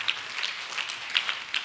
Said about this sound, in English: Wow, clap your hands for the Lord.